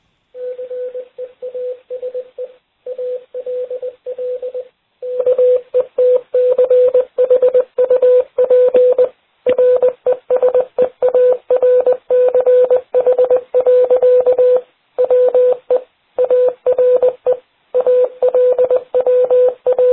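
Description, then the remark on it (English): A steady, buzzy beeping tone keyed on and off in quick dots and longer dashes, like Morse code, sounding loud with brief gaps between groups and no voices. “Do you know Morse code?”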